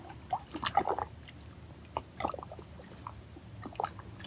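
water dripping and trickling

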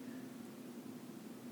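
radio static between stations

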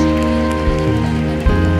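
audience clapping hands

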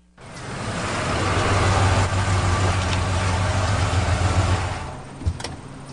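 truck engine idling

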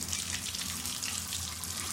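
shower water running

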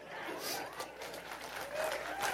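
audience clapping

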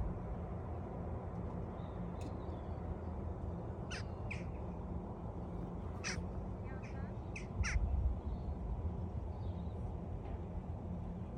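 seagull calling

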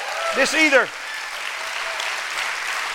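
audience clapping hands

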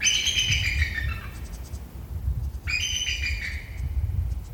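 bald eagle call

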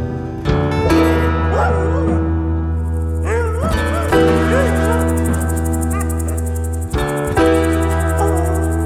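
dog barking

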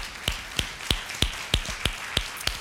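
audience clapping hands

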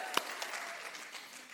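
audience cheering and applauding

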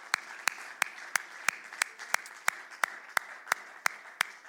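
audience clapping hands

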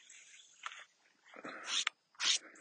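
dog making noise

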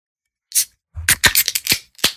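opening a beer can

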